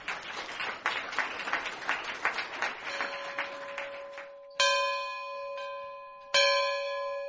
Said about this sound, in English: As the dinner bell sounded, project leader Chris McKay and I stood in the magnificent Mojave twilight on the edge of the dry lake bed.